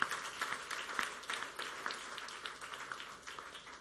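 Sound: audience applauding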